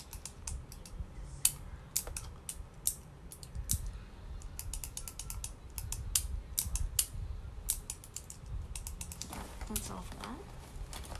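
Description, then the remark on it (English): Rummaging through pens and markers, including a blue pen and a green marker, while searching for a marker cap: a steady stream of sharp plastic clicks and clatters in irregular bursts, over a low background rumble. “A blue pen. Okay, green marker. Where's the cap?”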